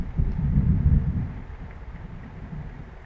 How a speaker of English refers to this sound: Oh my goodness. Can you hear that thunder out there?